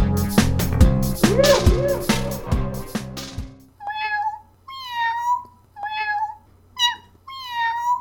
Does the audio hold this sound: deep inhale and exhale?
no